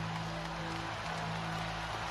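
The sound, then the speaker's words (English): A packed arena crowd of Golden State Warriors fans roars and applauds during a timeout late in a basketball game, trying to rally the team, in a steady, dense wash of noise that holds at an even loudness throughout, with no single voice standing out. “Warrior crowd trying to rally the Dubs here.”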